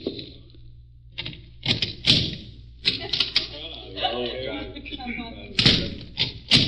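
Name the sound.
knocking on a door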